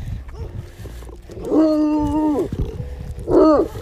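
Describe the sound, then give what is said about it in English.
Dogs howl during strong storms: one long, wavering howl followed a second later by a shorter, rising cry, set against a low rumble of background noise with no talking. “I missed your dog friends.”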